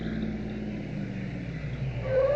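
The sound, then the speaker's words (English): A steady low engine rumble from cars arriving outside on a rainy day, growing a little louder at the end as a rising motor whine comes in. No one speaks. “Those cars outside.”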